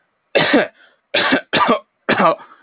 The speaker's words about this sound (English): Somebody in the audience coughs briefly.